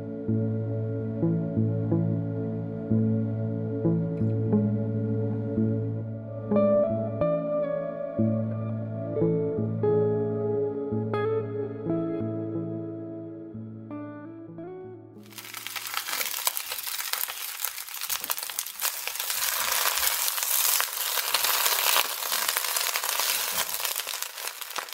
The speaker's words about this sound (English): The sound of sizzling bacon on a Sunday morning is quintessential to the American lifestyle. However, a method of making the bacon sizzle has become a subject of concern.